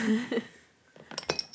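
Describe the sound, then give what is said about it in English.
Glasses clink together in a toast, several quick, bright taps with a short ringing tail. A low murmur of voices comes just before. “Cheers. Cheers.”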